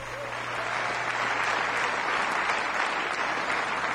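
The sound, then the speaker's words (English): Steady, dense applause from a large crowd at a live music recording at the White Barn, a continuous rush of many hands clapping at once, loud and sustained for the whole stretch with no voices standing out. “Sounds like a good crowd.”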